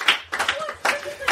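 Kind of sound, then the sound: crowd, round of applause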